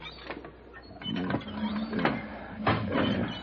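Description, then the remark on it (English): A hand water pump at the drought-stricken Wellman Ranch, running dry, is worked in a few slow strokes, its handle creaking and rasping mechanically with no gush of water, just a dry, squeaky grinding. “I tried the hand pump.”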